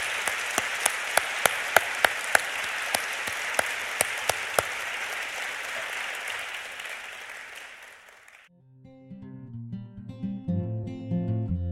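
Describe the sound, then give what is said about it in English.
An audience applauds Michael Thomas, Pablo Medina and Roxane Gay in a dense, steady wash of clapping with a few sharp claps standing out; it fades after several seconds and gives way to music. “So on that tantalizing note, please give a warm round of applause to Michael Thomas, Pablo Medina, Roxane Gay.”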